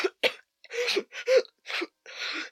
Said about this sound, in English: Link coughed and spat. As the stream left his lungs and his whole body lurched with the effort, Anju knelt with him on the grass as Link coughed on his hands and knees.